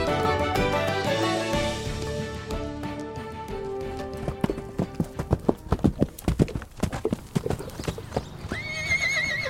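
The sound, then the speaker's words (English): The hooves of a horse named Plato clip-clop in a quick, steady rhythm over a musical background, growing clear after a few seconds, with a brief whinny near the end. “Oh, and I'd like to borrow the horse.”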